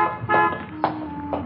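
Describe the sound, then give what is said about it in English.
A young blonde woman drives a car used in a holdup away from a repair garage, its engine humming steadily while a few short, bright horn-like toots sound over it. No one speaks. “The young blonde entered the garage office, paid the repair bill, and drove off in the holdup car.”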